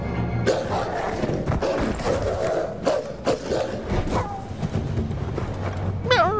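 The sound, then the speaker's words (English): A video game wolf attack: a busy stretch of scuffling, heavy thuds and sharp impacts, ending with a brief wavering, howl-like cry. The fight sounds are loud. “I would just counter the fucking wolf attack anyway, so it doesn't matter.”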